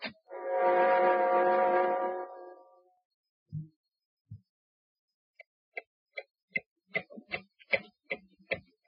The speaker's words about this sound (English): Listen, as the clock ticks on for John Littlefield.